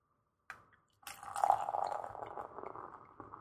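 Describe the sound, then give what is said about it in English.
Beer pours into a glass: a short tap, then a steady gurgling, fizzy stream of liquid that foams and slowly tapers off, with no talking. “Well, when I'm pouring it, it looks like I'm getting a good amount of head to it, so.”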